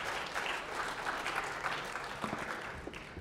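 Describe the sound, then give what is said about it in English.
An audience breaks into steady, sustained applause, a dense wash of many hands clapping at an even, moderate loudness throughout, with no voices standing out. “All right, so a round of applause again.”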